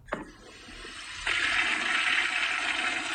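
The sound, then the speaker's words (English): A toilet flushes: a sharp click of the handle, then a surging rush of water that swells loudly and keeps roaring steadily. No one speaks. “Off it goes, round the bend.”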